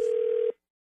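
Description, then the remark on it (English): A telephone ringing at the start of a phone tap prank call: a single half-second burst of a steady, mid-pitched electronic ring, fairly loud, cutting off abruptly into silence. No voices. “It's another phone tap.”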